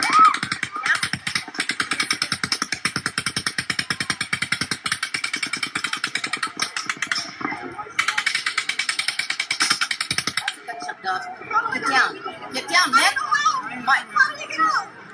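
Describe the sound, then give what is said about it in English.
Paddock's eighth burst of automatic rifle fire, over six minutes into the shooting, as people take cover at stage left: a rapid, even stream of sharp cracks with one brief break, cuts off after about ten seconds, leaving agitated voices. “But people are still taking cover at stage left when Paddock fires an eighth burst.”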